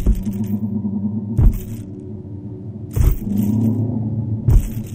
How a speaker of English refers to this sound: The sound of ghosts walking, according to the sound effects machine.